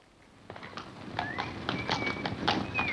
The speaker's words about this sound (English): He rides on his horse and cart, Charlie does.